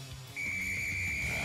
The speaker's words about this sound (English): Again, it's a dog whistle.